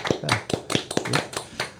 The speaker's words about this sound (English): Will you guys give yourselves a round of applause? I'll tell the audience in a minute, but yeah, go ahead, let them hear you clap.